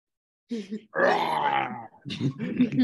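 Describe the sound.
A person growls and groans in a drawn-out, rasping voice, mimicking a dragon's roar, followed by a shorter burst of gravelly vocal noise.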